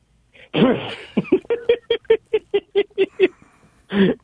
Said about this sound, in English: You got corona. Yeah, the virus. I got the vid. You know. So it was nasty. Still got a little bit of a cough.